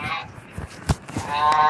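Geese honk loudly in a brief burst of harsh, overlapping calls, with a sharp clack partway through and a brassy, nasal honk rising at the end.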